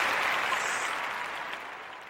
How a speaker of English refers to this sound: That's a applause for my Lord and Savior, Jesus Christ. That's a shout out and applause for my Lord and Savior, Jesus Christ, of what he done for the world.